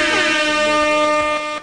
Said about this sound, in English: Where are my air horns?